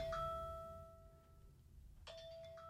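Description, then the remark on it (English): A kitchen timer chimes twice, two bright ringing tones about two seconds apart, each sustaining and slowly fading over a low background hum. No one speaks. “Now, that timer, folks, I don't know how much was recorded doorbell?”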